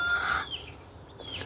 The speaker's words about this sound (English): Let's go and see the chickens. The chickens are in their new house.